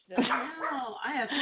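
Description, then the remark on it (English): A puppy whimpers and yelps in a continuous, wavering whine with short bark-like bursts, moderately loud, lasting a second or so. “Feed that fucking dog some peanut butter for something, Christ's sake.”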